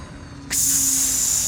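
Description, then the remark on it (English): A sci-fi exit bay door slides open after landing on Arthon with a sudden, loud hiss that starts abruptly and holds steady like escaping air, over a faint low hum. “The exit bay door opened with a hiss.”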